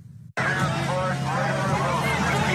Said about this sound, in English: There were nearly 200 officers here as protesters and counter-protesters fought in the streets. Then chaos as a car drove through the crowd.